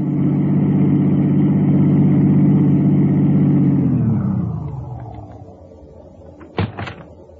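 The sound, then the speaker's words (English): A car engine roars loudly and steadily for a few seconds as the car is turned around and driven off as fast as possible, then fades quickly as it speeds away, followed by a brief sharp clunk near the end. “I turned the car around and headed back for Lerner's place as fast as I could”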